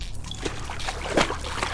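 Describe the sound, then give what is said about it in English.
Water splashes and sloshes in a few uneven bursts, with a soft trickling texture between them and a low rumble underneath. “The wires fell at my feet and into the water as I heard myself screaming into eternity.”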